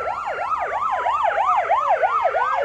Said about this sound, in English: No, this is not a sound effect from high speed, but the dreaded highway robbery siren